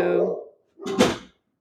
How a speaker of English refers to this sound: Can I just close that door?